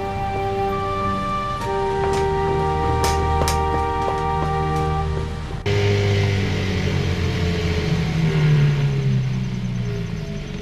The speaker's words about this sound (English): Out in the swamp, Kenderson's getaway boat stalls. As he's trying to restart it, a creature emerges from the water and pulls him in, leaving his boat floating about.